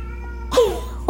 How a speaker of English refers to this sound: Can you hear my cat meowing? He's probably meowing for his sister or me. Oh, he's just meowing for me.